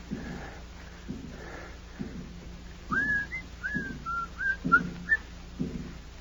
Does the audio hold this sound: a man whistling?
yes